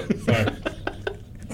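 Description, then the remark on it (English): A fairly loud cough from a person who is unwell bursts out, followed by several shorter, sharp hacks in a rough, uneven rhythm. “Cough away from the mic.”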